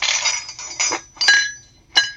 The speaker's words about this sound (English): Sometimes that's easy, because, you know, the sound is what it sounds like. Like, you know, a clatter around a breakfast table.